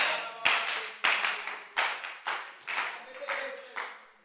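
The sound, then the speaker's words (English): Steady hand clapping, about eight sharp claps at an even beat, each with a short ringing tail that fades before the next one lands. “You'll be clapping and people will fall down.”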